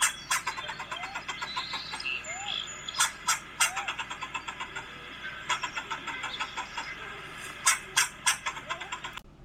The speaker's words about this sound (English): That's right. A squirrel. There you go. That's a squirrel. You heard it. Right? So squirrels will bark, and don't get me wrong, they're pretty distinct, but there are some birds that kind of sound like them, so you got to watch yourself, right?